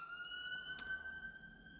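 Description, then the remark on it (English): A police car siren holds a steady, high wailing tone throughout over a low background hum, with no one talking. “If you heard that siren.”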